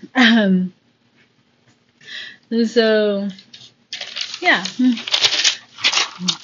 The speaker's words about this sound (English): Turning the page, because I wrote shit down today.